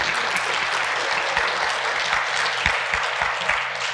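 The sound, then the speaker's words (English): An audience applauds children who recited Isaiah 53 all the way through, a dense wash of many hands clapping at an even, fairly loud level for the whole stretch, with no voices standing out. “So, you can give them a round of applause.”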